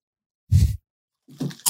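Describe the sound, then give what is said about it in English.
Crisp crunching of Ripples home style chili ridged potato chips: one loud bite, a short pause, then a second burst of brittle chewing crackles. “Munch pass. You know the rules.”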